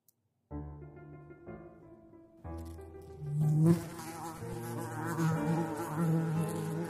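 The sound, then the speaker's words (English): A large wasp buzzes steadily in flight, its droning hum shifting in pitch as it moves, growing louder and rougher partway through with no talking. “The wasp was just as big as I'd thought after my initial encounter.”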